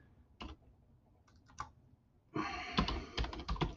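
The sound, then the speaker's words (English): Computer keyboard typing: a few isolated keystrokes at first, then a quick, dense burst of clattering key presses toward the end. No one speaks. “I'm typing something in real quick.”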